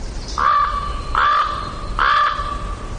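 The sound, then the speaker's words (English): A common raven gives three hoarse, low croaking calls, evenly spaced about three-quarters of a second apart, clear over a low background hum, with no voices. “Crows give a cawing sound, but ravens produce a lower croaking sound.”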